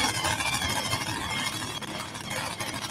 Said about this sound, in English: Takes a minute to get these blower trucks cranked up. They got to start them from outside the truck. Driver inside got to have somebody out the blower to run the starter.